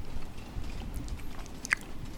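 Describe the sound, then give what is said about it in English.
Quiet chewing with soft, irregular mouth sounds and one sharper crunch near the end, no voices, just steady munching against a faint low rumble. “Are you chewing audibly so we hear you, or is this something?”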